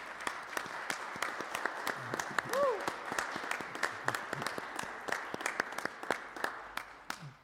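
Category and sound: crowd, round of applause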